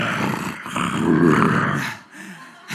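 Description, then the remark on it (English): A deep, rumbling lion roar, loud, swells for about two seconds, then fades into a lower growl. No one speaks. “But I ran to the roar.”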